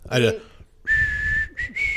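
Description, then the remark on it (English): A person whistles a tune, clear sustained notes that shift pitch with brief gaps between phrases, after a short vocal sound at the start. “I walked around the jail whistling ….”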